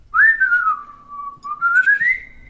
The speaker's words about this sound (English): Who can whistle? Who can whistle here? Who's a good whistler?